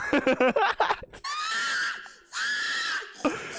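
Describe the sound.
A loud pig-calling yell at a pig calling contest: a quick run of clipped vocal bursts, then two long, high-pitched, drawn-out hollers that swell and fade, with no other sounds around them.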